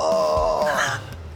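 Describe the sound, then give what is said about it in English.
A person voices a strained, wailing gasp imitating a man who has been shot, a drawn-out dying breath that rises and then trails off into quiet within about a second and a half. “He like gasps for a moment and dicks.”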